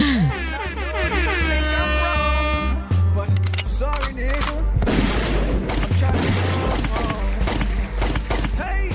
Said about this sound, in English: First off, let me get my gunshots. I got a few things to say.